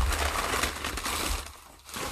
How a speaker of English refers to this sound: And we got some packing paper here.